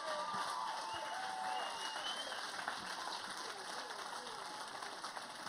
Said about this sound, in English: That's awesome. That's awesome. Stay standing, stay clapping, stay excited. Come on, church. Come on.